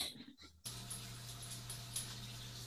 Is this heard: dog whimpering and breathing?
yes